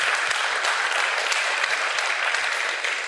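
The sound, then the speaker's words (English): A crowd applauds steadily for people's answers, a dense wash of many hands clapping at an even loudness throughout, tapering slightly at the end, with no voices over it. “And I thought, let's give them a round of applause for those answers.”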